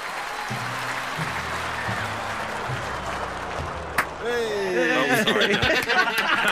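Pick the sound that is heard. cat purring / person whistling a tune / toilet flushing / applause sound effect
applause sound effect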